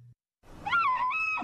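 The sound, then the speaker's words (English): A woman lets out a single loud, anguished wail that swoops up and then holds a high, strained pitch, sounding much like an elk's bugle, as her RV sewage tank spews all over her camper out in elk country. No talk accompanies it. “Ah, the bull elk's bugle, one of nature's most wondrous sounds. That is not a bull elk,”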